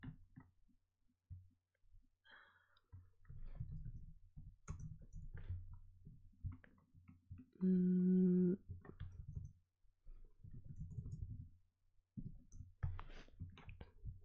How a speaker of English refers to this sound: Sorry, I'm just typing up everyone's roles.